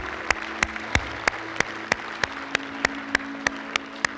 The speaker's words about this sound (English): Come on, let's give God a round of applause today.